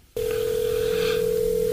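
A steady, single-pitched telephone ringing tone of an outgoing call cuts in abruptly and holds unbroken, loud, with the phone held up to the microphone. No one speaks.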